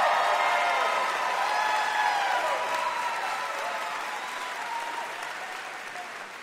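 A studio audience claps and cheers steadily after someone says the name of the Lady Vols, dense applause with a few whoops and voices rising above it, fading slightly toward the end.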